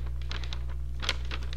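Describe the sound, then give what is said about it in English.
Soft, scratchy strokes of a pen or pencil as a woman writes something down on paper, moving in short irregular bursts, with a steady low hum underneath and no talking. “I wrote it. It's on paper now.”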